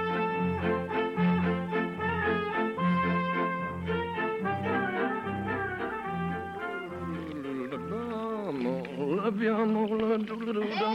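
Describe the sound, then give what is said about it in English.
Goats bleat almost nonstop, their wavering, nasal cries overlapping loudly for the whole stretch, with a buzzy, tremulous edge to each call. “Move over. We got goats.”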